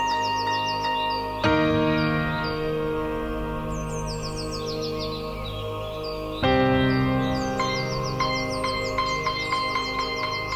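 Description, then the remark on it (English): Bright, rapid bird chirps and trills flutter high above a sustained, harmonically rich bed of held male chorus tones, with plucked and struck piano and harp notes entering in pulses as the music swells twice. “There are four sounds in this song: a male chorus, birds, piano, and harp.”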